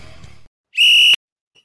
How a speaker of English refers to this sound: You got the whistle for the third quarter. I got the whistle. That's right.